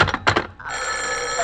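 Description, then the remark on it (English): A telephone bell rings loudly: a few sharp clanging bursts, then one continuous metallic ring that holds steady to the end. No one speaks. “Oh, what's the matter with his phone?”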